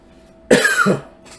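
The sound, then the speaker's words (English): A single loud cough with a harsh, raspy double burst lasting about half a second, followed by a faint breathy exhale, with no talking. “Excuse me, I'm not fancy. I don't have a cough button.”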